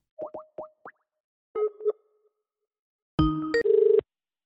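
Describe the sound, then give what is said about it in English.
A telephone call is placed: a quick series of popping electronic blips and short tones gives way to a loud, buzzy telephone ring, clear, with no voices. “I'm no doctor of the relevant kind, so let me phone a friend.”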